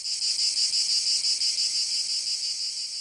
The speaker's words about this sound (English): As it vibrates, the rest of the insect's body acts as an amplifier. Basically, the inside of a cicada is a boombox. The tracheal system has been modified, and it's just a big hollow drum inside to be able to magnify the sound.